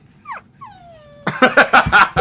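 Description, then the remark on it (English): A dog whimpers in two high, thin whines that slide downward in pitch, followed by a burst of louder, choppy yelping noises. “Scruffy, no! Oh no, dog, no!”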